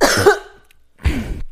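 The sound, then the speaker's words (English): A loud burp, a short guttural rasp followed after a brief pause by a second, rougher belch. No talking. “No, don't burp. I thought you wanted me to burp again.”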